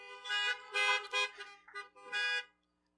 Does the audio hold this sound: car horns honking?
yes